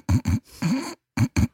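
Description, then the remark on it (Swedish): A voice imitates a baby's snorey, congested breathing: a few short, rough snuffling breaths in quick succession, one longer drawn-out breath, a brief pause, then two more fairly loud snorts. “Sen har de en snarkig andning som blir så här.”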